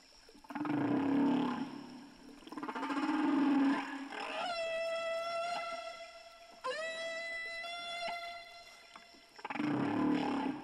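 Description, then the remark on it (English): Humpback whale song, with deep groaning moans alternating with long, rising, harmonic wails in slow, repeating phrases. The calls are loud and resonant, with no talking. “Probably the song of the humpback whale has done more than anything else to win support for the conservation of whales all around the world.”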